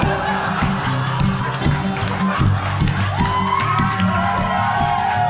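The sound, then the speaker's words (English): A live crowd roars and cheers steadily for several seconds, with shouts and whoops rising over a dense wash of noise and scattered clapping, loud throughout. “Don't clap. Don't laugh. Don't applaud.”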